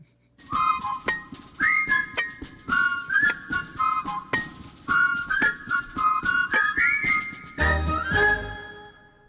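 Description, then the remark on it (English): Someone whistles a bouncy theme tune for about nine seconds, the melody rising and falling in short phrases over steady percussive taps, ending with a low thump. “Do we want to start the whistling?”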